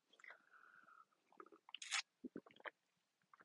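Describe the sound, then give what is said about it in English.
A quiet slurping sip of coffee, followed by a brief airy breath and a few quick gulping swallows. No one speaks. “Let me just have a sip of my coffee.”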